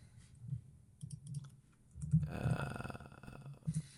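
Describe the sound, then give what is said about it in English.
A few soft, scattered clicks on a computer as someone clicks on a Lord of the Rings, The Return of the King result. A small cluster of sharper taps comes in the middle and near the end, over faint background noise. “All right, I'm clicking on it.”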